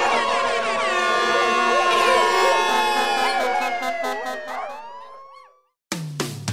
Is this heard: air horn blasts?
yes